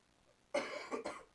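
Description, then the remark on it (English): A short burst of coughing, two or three quick rough hacks, clearly audible against an otherwise quiet background with no talking. “Sorry, I've got a cough.”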